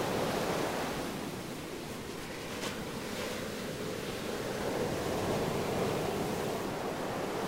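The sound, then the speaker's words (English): Steady ocean surf rolls continuously with a broad, hissing wash of waves, moderately loud, with no voices and only slight swells in intensity throughout. “I'll leave you with the sounds of the ocean.”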